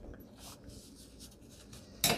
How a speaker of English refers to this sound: Okay, let's just try this. Trying to cut straight line with the scallop scissors.